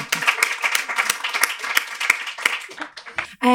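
A crowd applauds, many hands clapping in a dense, steady patter with a few sharper claps standing out, holding fairly loud for about three seconds before cutting off.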